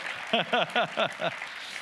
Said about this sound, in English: yeah, you can clap. Come on, we talked about being engaging.